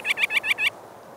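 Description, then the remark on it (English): A quick series of five sharp, high-pitched calls of a rock sandpiper, a shorebird, in rapid succession, clear, then fading into quiet background hiss. “Gulls, waterfowl, and many other birds forage along the spit, but rock sandpipers are the only shorebirds.”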